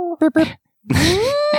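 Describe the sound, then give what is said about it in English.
A voice imitates an elephant trumpet: a few quick choppy vocal bursts, a short pause, then a loud, sustained blaring call that sweeps upward in pitch and holds high. “as you are tangoing across the grass, you hear Gelsira give an elephant trumpet.”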